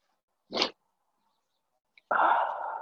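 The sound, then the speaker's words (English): A short, sharp sneeze bursts out of near silence, followed a moment later by a longer, loud, breathy rush of noise that trails off slowly. No one speaks. “50 degrees gives me the sniffles.”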